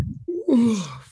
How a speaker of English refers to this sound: You just made me yawn. You just made me yawn, dude.